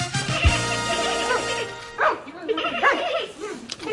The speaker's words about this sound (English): Well, you're both wrong. Those are pandas fucking...